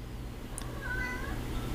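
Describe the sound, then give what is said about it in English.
A single cat meows once, a drawn-out, rising-and-falling cry at moderate volume, heard over a low steady background hum with no talking. “You fucking goddamn cats.”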